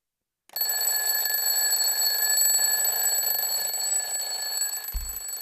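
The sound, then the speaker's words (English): A mechanical alarm clock, set by spinning its alarm dial and turned on, bursts into loud, continuous bell ringing, a rapid metallic clatter that starts abruptly and keeps going steadily, with a brief low thump near the end. “But let me set my alarm and I will show you kind of what it sounds like.”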